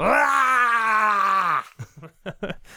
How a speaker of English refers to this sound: I'm going to slap on it and then just put a hand of his blood on my head and just scream out as I, like, writhe in the glory of my first interaction of this particular combat.